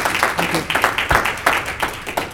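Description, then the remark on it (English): An audience applauds for all the panelists at the end of a panel session, many hands clapping in a dense, irregular patter that stays fairly loud throughout, with sharper individual claps popping out of the crackling wash of sound. “But let's give a big round of applause for all the panelists.”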